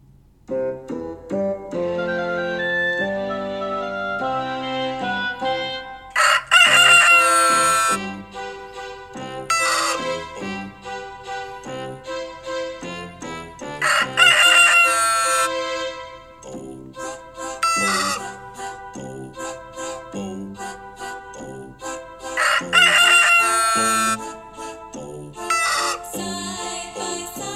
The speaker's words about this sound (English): Oh, please forgive my terribly randy rooster.